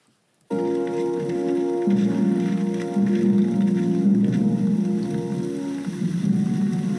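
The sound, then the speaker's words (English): Steady rain comes in abruptly after a brief silence and pours continuously, a dense hiss of drops on surfaces with a low droning hum beneath it. “Yeah, I think getting rained on is the least of your worries, and Wu should know that.”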